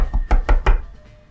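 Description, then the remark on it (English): Three firm knocks on a front door in quick, even succession, after a lighter tap. The knocks are solid, fading into quiet room tone. “So you knock on the front doors there.”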